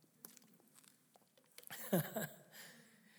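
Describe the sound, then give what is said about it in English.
Quiet mouth noises: a few faint clicks and taps, then a brief louder slurp and swallow as someone sips water. No one speaks. “Chew on that for just a second while I take a drink of water.”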